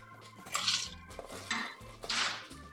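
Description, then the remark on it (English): Ice clatters into a metal cocktail shaker tin, filling it three-quarters full, in three bright, rattling bursts, each scoop a quick jangle of cubes hitting metal, with no talking. “And then we are going to fill up our shaker tin 3/4 of the way full of ice.”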